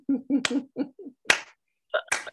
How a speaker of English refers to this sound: That's a slow clap right there.